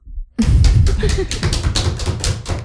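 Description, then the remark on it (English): A few people clap together in a quick, uneven burst of sharp slaps lasting about two seconds, fairly loud, with some voices murmuring underneath. “Please clap.”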